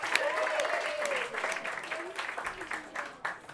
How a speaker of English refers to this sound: All right, then instead of having the clapping start somewhere in the room, I'd like all the clapping to start at once. And please welcome to the stage, Huge Davies.